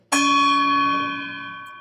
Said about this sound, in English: You have to hire a guy to stand there and bang the gong if you don't want to do it yourself.